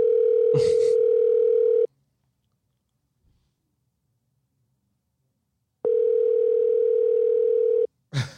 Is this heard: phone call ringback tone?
yes